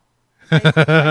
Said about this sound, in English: We've had this dog for 3 years. He's never vomited, and now he's about to.